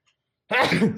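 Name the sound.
sneeze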